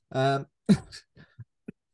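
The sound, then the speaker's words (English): A brief voiced sound, then a single sharp, rough cough with a raspy tail, followed by a few faint throaty catches trailing off into quiet. “I just coughed at the mere thought of the podcast going on forever.”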